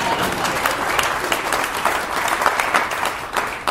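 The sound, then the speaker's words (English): An audience of broadcasters breaks into applause, a dense, steady wash of many hands clapping at a fairly loud, even level for a few seconds, with no voices standing out. “You're supposed to applaud.”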